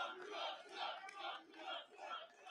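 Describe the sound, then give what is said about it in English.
A large crowd cheers and shouts in loud, surging waves that rise and fall about every half second, like a rhythmic chant, with no single voice standing out, as a speaker comes up to the stage or podium. “You let people cheer for you.”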